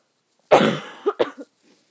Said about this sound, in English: I will be coughing a lot because even though I don't have, like, a cold or anything, it's probably allergies and also weird.